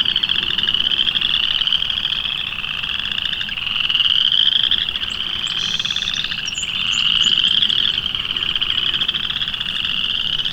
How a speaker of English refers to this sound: A song sparrow right in front of me, and you can barely hear him because of all of this chorus frog song.